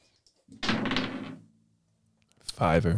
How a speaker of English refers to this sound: Two dice. All right, roll two of those dice, and I'll tell you what you got to do.